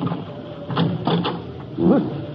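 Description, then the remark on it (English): The door handle of Tassinari's curio shop, an old junk shop, rattles and clicks in a few quick, sharp bursts as the door is tried, followed by a short rising creak as the unlocked door swings open. “Let's try the door.”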